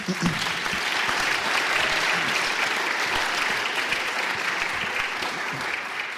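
A crowd claps steadily for several seconds, a dense, even patter of many hands at a loud, sustained level with no voices over it.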